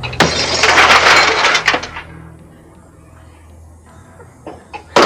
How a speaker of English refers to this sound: the Glass Smash preset